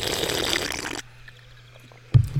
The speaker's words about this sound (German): Schön geschlürft.